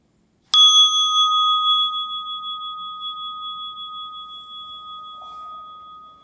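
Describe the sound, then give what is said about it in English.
A single bell is struck once, its clear metallic tone ringing out and slowly fading over several seconds amid quiet. “And as the bell rings, opening your eyes.”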